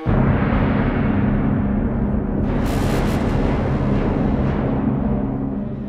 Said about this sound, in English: There's a moment towards the end of the movement where the viola kind of suffers this massive emotional breakdown, which is then answered by a huge orchestral explosion.